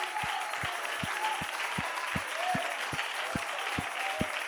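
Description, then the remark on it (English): An audience claps hands to Jesus in a steady, even rhythm, the dense clatter loud and continuous, with a regular low thump marking each beat and faint voices mixed in. “Come on, clap your hands to Jesus.”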